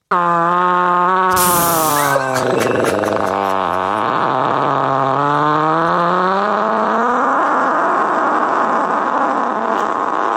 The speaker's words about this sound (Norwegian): Og en fiser jeg fant på YouTube.